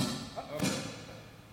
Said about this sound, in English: This is the wrong season for me to be hearing gunshots.